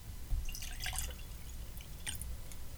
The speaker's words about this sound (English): I had to go buy a bottle. They're about $90 MSRP, but I figured it would be a good one, a weird one to have on the podcast today. So let me go and get that poured.